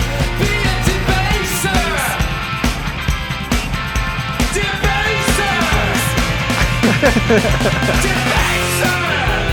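A loud, dense rock song with pounding drums and distorted guitars, and a raw, strained singing voice rising into a scream over the band.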